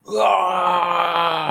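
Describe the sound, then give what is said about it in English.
A man imitates a Macho Man Randy Savage growl, one sustained, raspy, low-pitched vocal rumble lasting over a second at steady loudness, with no words. “As soon as he gets it, though, throwing that shit onto the ground and doing, like, a Macho Man Randy Savage growl.”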